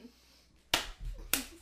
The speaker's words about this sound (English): They're jumping out their chairs trying to slap each other.